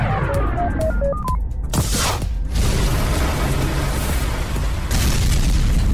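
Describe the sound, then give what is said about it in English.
A quick run of electronic beeping tones gives way to a sudden loud crash and explosion, then a heavy, sustained roaring rumble that carries on to the end, as when a test rocket crashes. “The test rocket crashed.”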